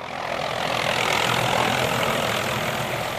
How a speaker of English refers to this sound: With State Highway 1 blocked by multiple massive slips north and south, and the rail line actually torn off and lying on the seaside rocks, it's choppers that will be crucial for some time to come.